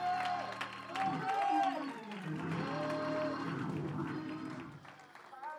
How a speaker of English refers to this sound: Oh, somebody give the Lord a shout of praise.